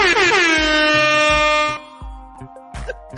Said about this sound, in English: Hang on. This man earned it. Give him his air horn.